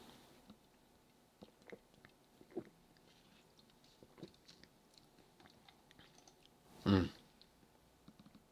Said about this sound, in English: I really don't know why my throat is so dry all of a sudden, so I'm just going to get a sip off of my Dr. Pepper. One sec.